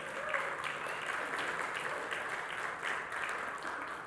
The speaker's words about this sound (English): and there's no land for peace, so let's give the Lord a hand clap for that.